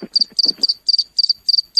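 An insect that sounds like a cricket chirps steadily, heard over a phone: a quick series of high, trilling pulses repeating about every quarter second, with faint low rumbling beneath the first few chirps.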